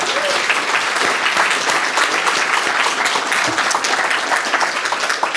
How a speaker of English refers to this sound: during her career as librarian here in Dunleary, she did so much to support the work of writers, and especially local writers, and I think she deserves a round of applause for that.